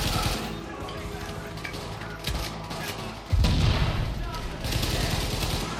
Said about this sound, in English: Oh, wow. Beautiful explosion effect.